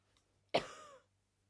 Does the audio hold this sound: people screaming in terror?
no